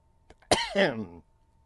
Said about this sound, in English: Excuse me, but I do have a little bit of a cough today that I'm putting under control.